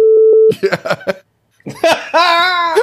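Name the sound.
censor beep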